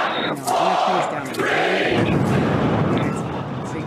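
A crowd cheers and shouts loudly at the launch of the Starship rocket, voices rising in excited whoops over a steady, broad roar that swells and continues without pause for several seconds.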